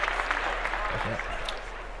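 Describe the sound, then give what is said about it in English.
A small group claps steadily to celebrate a graduation, a dense, even patter of hands lasting a couple of seconds, with a faint voice briefly audible underneath. “Let's clap that up”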